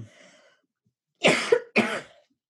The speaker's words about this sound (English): Should I move not cough into the microphone?